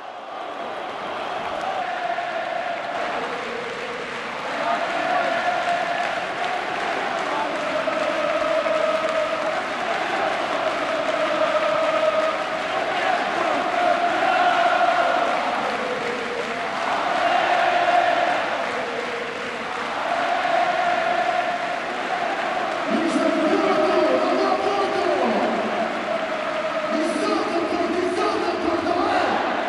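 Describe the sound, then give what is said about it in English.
A large football stadium crowd roars for the full half-minute, loud and unbroken, with shrill whistling aimed at the Sporting players and chant-like tones rising and falling in waves over the din. “You can hear the whistles now, the Sporting players.”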